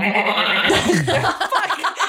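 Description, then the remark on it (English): A goat wanders in, bleating with a wavering, quavering cry lasting about a second, fairly loud, over a steady background of noise, with no speech. “And another goat comes wandering in.”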